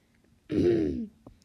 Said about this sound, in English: What was that little cough there? Do you need a little cough medicine?